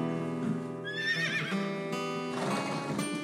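A horse lets out a loud, quavering whinny, its shrill call wavering up and down before trailing into snorting, breathy neighing, with no voices present.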